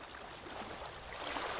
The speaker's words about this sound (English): can you cue up some sexy water noises?